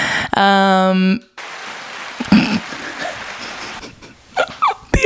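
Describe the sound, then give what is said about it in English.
A loud, harmonic buzzing tone sounds for about a second, then a steady wash of crowd applause crackles on for several seconds, with a few brief voices rising near the end. “Not the applause. Those are all my fans.”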